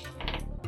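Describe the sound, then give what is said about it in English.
Six dice are rolled in a dice game, rattling and clattering together in a quick burst of overlapping clicks, rolling briefly under a low background rumble before settling. “So I roll 6 dice.”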